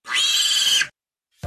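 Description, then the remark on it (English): A pig gives one loud, shrill, sustained squeal lasting almost a second, then a short silence before another sound begins to rise at the very end. “Pig grunts indicate their emotions”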